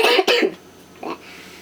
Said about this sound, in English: I coughed, I forgot. Oh my gosh.